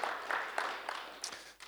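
A small group clapping, fairly faint, with irregular sharp claps standing out over a steady hiss of softer applause. No voices can be made out.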